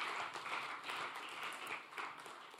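An audience applauds, many hands clapping in a dense, steady patter that holds at an even level from start to finish, with no voices standing out.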